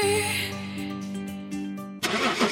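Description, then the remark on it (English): A shiny new sports car engine starts with a steady, tonal mechanical hum for about two seconds, then bursts into a louder, rougher roar as it revs up. “I hardly recognise you in this shiny new sports car.”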